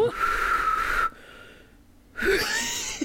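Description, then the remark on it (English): Someone tries to whistle in two breathy bursts, mostly airy blowing carrying a thin, wavering tone, separated by a second of near silence. Fairly loud, with no talking. “So it's quite a big whistle hole you got there.”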